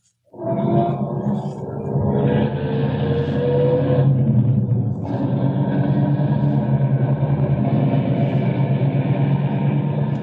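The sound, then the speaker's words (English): An engine turns over and catches, revving up with a rising whine, then settles into a steady, loud rumble as the car drives on, without any voices. “Start up the car.”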